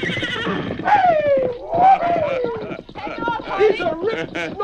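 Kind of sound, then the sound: animal, horse neighing and whinnying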